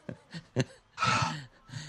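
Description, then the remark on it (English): Heavy, rapid panting: a few quick breathy huffs followed by one longer, louder exhale and another short breath, with no one talking. “I'm panting like I've been running, which doesn't make any sense.”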